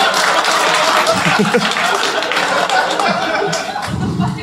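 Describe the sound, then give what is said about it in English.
A crowd claps steadily, a dense, loud patter of many hands running the whole time, with a few murmurs and faint laughs mixed in underneath. “No, don't clap.”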